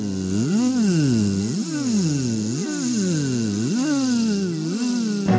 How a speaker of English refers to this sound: Bees! Bees! Bees! This sounds like big, giant, magic bees!